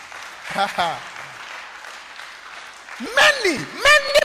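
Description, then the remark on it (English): An audience claps during a sermon in a steady wash of applause, with loud voices calling out and cheering over it in two bursts, one early and one near the end. “Oh, if you are clapping, clap well.”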